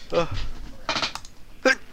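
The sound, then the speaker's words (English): A sneeze picked up over a Discord call: a couple of breathy, voiced build-up sounds, then a sharp noisy burst and a short, high-pitched squeaky catch at the end. “My sneezes aren't that high of an octave.”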